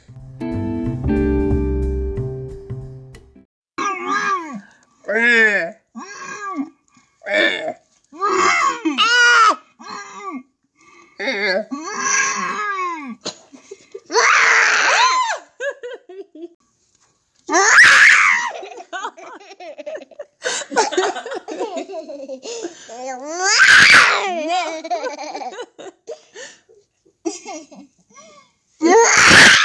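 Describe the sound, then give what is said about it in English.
Young children babble, squeal and scream playfully just before bedtime, in bursty outbursts mixed with giggles and laughter, loud and energetic throughout with short pauses between shrieks. “Screaming like that.”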